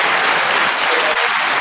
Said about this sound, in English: I don't even know. I don't even know if that the clapping is good enough.